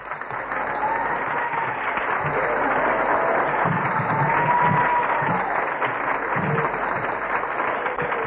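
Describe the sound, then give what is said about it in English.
An audience claps for Jesus steadily for about eight seconds, a dense, even wash of many hands at a constant loud level, with faint voices murmuring underneath. “Come on, give Jesus a clap.”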